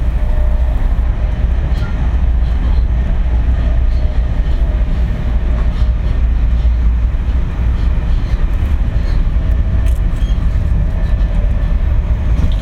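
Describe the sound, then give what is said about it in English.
Steady low rumble inside a moving train carriage, with faint rhythmic clicks of wheels over rail joints running continuously beneath a constant droning hum; no voices. “The places that I frequented at that time were mainly trains, the insides of trains.”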